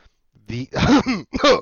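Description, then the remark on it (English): A voiced cough with a throaty, harsh edge, breaking into three rough bursts over a second or so, loud and alone with no talking around it. “I thought the cough was going to be the name.”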